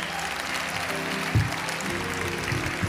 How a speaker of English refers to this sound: I know we've been clapping a lot, but one last standing ovation for our Lord.